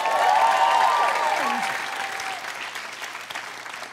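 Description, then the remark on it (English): An audience applauds a performer's claim of having lost 55 pounds, in a steady wash of clapping that starts strong and gradually thins out, with a few cheers or whoops rising over it early on before the clapping fades. “Like how you guys are slow to clap, like you're still kind of fat though.”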